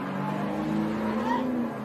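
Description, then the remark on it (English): Race trucks roll past under caution at an unhurried pace, their engines a steady, fairly loud drone whose pitch climbs gently before easing off, with faint muffled voices in the background. “And the trucks are going by under caution.”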